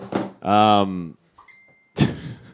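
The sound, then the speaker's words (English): A Facebook message notification sounds: a loud, buzzy electronic tone holds for about half a second, followed by faint high, thin tones, with short noisy bursts before and after. “Thank God it was a Facebook ring and not my phone ring.”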